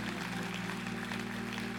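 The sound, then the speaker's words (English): An audience claps steadily at the speaker's request, a dense, even wash of many hands, while low sustained keyboard or organ tones hum underneath the whole time. “Can I make you clap for that?”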